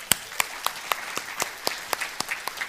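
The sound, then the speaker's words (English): A worship audience claps together in a steady, rapid rhythm as a clap of praise to the Lord, each sharp clap cutting through a soft wash of scattered applause, with no voices heard. “Can we give the Lord another clap of praise?”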